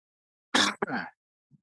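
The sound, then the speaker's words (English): A single sharp sneeze bursts out fairly loud, a quick noisy blast followed by a brief voiced tail, then near silence apart from a faint soft sound at the end. “Bless you.”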